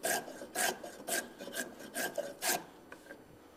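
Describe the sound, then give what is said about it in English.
A hand plane shaves wood in a steady run of about seven rasping, hissy strokes, each a short swish with brief pauses between, and no talking. “If it's tearing out on you, probably you need to plane the other way.”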